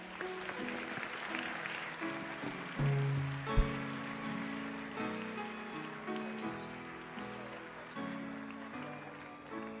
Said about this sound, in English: Thank you. Let's give the Lord one more round of applause for these individuals.